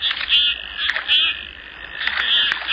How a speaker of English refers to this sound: It's Bucephala clangula, the common golden eye.